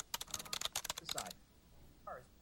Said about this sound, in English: I was calmed by the sound of her typing. At her furious typing pace, she sort of had a, yeah, things will work themselves out kind of rhythm to her typing. She was on the computer behind me